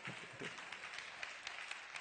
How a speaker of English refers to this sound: That's a good place to clap, and you almost missed it.